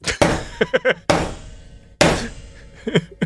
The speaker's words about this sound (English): The one exception that I will say about knocking, the worst way to do it is if you do a really scary knock, like...